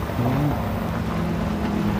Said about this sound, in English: Oh, truck.